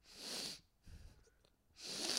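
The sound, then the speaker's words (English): Two airy breaths drawn in through the nose, with a soft, low sipping and swallowing sound from an empty water bottle held up to the mouth between them; no talking. “And you just like hear me like breathing in through my nose while I do it, which is like...”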